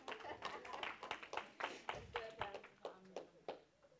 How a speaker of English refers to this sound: Jesus, just give a little clap. There you go.